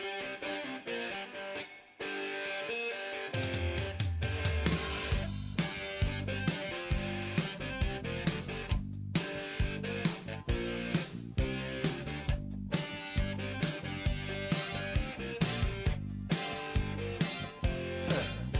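A rock song with guitar plays alone, opening with a brief sparse intro before the full band kicks in with a steady, driving beat at a consistent, fairly loud level.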